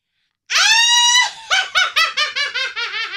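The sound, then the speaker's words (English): A voice imitates a witch's cackle: a loud, high, drawn-out shriek followed by about eight rapid, staccato cackling bursts that gradually drop in pitch, with no other talking. “I'm going to do my witch cackle.”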